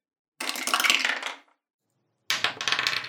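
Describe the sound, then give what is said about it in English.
Dice for constitution saving throws in a tabletop role-playing game clatter and tumble across a hard tabletop in two separate rolls, each a quick rattling burst lasting about a second, fairly loud, with a brief quiet gap between them. “Everybody give me a constitution saving throw.”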